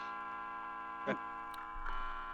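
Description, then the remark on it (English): A few sharp, separated ticks from a big clock indoors sound over a steady electrical hum, moderately loud, with no voices. “That's the clock, I guess. A big clock.”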